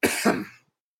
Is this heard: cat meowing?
no